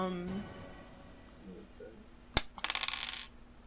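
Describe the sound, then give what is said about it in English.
An eight-sided die (d8), rolled for damage in a tabletop roleplaying game, clatters onto a hard tabletop with a sharp initial click, then tumbles in a quick run of light bouncing taps before settling; a voice murmurs briefly beforehand. “Okay, and then I need a d8. Where the fuck is that? Sorry, I don't use real dice all the time.”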